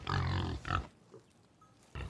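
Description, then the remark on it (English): A pig named Blackie lets out loud squealing grunts in complaint at a feeding trough, in a burst lasting under a second, falls quiet briefly, then starts another grunt at the end. “He complained because he couldn't stick his nose through 2 holes at the same time.”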